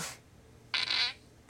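A short, buzzy fart sound effect from a soundboard blares out in the middle, loud, with brief clipped bursts of similar noise at the very start and end. No one talks.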